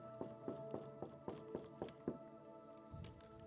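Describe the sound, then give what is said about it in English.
About eight evenly spaced raps on a door in a quick steady rhythm over a faint constant hum, then a single duller thump after a short pause. “knock on the door.”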